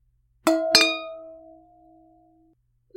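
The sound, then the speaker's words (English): Two quick glass clinks close together, bright and ringing, followed by a sustained tone that fades slowly over about two seconds, like wine glasses touching in a toast. “All right, are you ready to cheers? Let's try these wines.”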